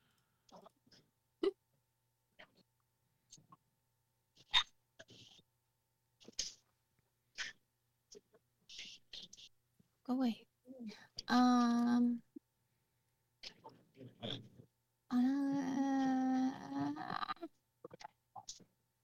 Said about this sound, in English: Sorry if you can hear my dog squeaking his squeaky toy. He's just, hopefully, Discord's cutting that. Shut up! Loud ass dog.